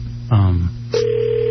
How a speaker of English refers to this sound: Phone is ringing.